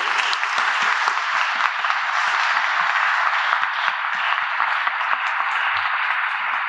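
A crowd applauds the standing volunteers of a youth ministry's winter weekend, a dense wash of many hands clapping at once, loud and sustained for several seconds with no voices rising above it.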